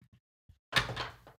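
A small wooden nutcracker figurine is knocked over: a sudden knock and clatter that rattles briefly before settling, after a couple of faint soft taps.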